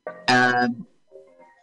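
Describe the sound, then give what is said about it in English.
A short snatch of movie soundtrack music: a loud, bright sustained chord swells briefly, then fades into a few softer, quieter melodic notes, with no voices. “Sorry, I had to hear what music was playing.”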